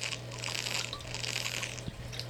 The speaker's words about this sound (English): Oh, that was my water bottle.